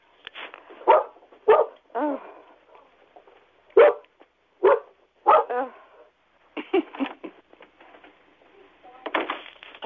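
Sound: dog barking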